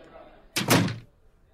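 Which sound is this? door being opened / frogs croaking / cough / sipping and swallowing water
door being opened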